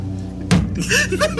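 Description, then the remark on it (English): A single heavy, blunt thwack of a baseball bat striking the side of a person's head, loud, followed by a short, strained vocal grunt as a low hum continues underneath. “Tears swelled up in my eyes as I reached out, grabbing the baseball bat, turning around to catch them in the side of their head.”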